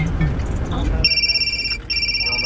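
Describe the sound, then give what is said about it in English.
A bright electronic ringtone for an incoming phone call through a car's system starts about a second in, two steady high tones sounding together with a brief gap, over low rumbling road noise that follows a moment of muffled activity. “Incoming call. Press the phone button to answer.”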